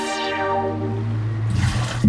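Water sloshes and splashes out in a short burst as someone bails water out of a rover, following a steady low droning hum. No one speaks.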